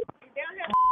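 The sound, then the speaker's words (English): A short stretch of muffled talk is followed by a single steady telephone keypad tone, clear and fairly loud, held for a moment at the end. “So I need you to call on three ways.”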